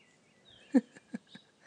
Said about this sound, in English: Oh, the birds are so sweet.